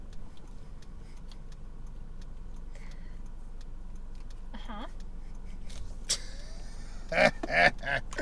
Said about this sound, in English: I don't know who would listen to all this car noise